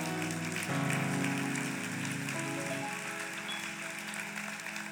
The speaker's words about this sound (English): I'm going to make everybody clap for that.